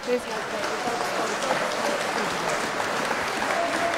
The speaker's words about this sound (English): All of those people were clapping in for everything that he said.